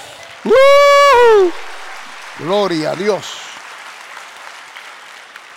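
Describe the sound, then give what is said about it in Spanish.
An audience applauds in a steady, textured wash that runs under the whole clip, while a voice shouts a loud, drawn-out exclamation and another voice calls out more briefly. “Dale un aplauso aquí.”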